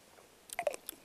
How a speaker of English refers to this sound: Anyway, I am drinking this. I can't tell if I like it or not. Let me take another sip. Let me find out.